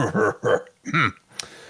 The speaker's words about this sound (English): And with that, the dwarf coughs.